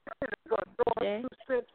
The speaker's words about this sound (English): The phone is breaking up again.